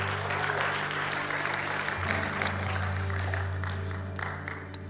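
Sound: audience applause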